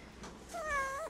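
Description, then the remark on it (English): A single meow from Miles, a big, very furry pet cat that is not a tabby, drawn out for about half a second with a clear tonal, slightly wavering pitch, against faint background hiss with no talking. “Oh, very nice vocalization there's, Miles.”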